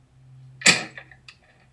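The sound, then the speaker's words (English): A sheet of paper with a drawing on it is flipped over in one quick, crisp swish during a drawing demonstration, followed by a couple of light taps and rustles as it settles, against a faint steady hum. “flip it over so it looks like this, and then draw two lines and make an arrow at the end of that triangle.”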